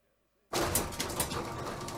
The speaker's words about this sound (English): Look, I'm going to open the loading bay door and get this in.